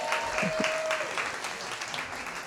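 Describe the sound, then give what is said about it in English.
Steady audience applause at a storytelling slam fills the space, a dense wash of clapping hands from a crowd, sustained at even loudness with a few brief voices and whoops mixed in. “A round of applause”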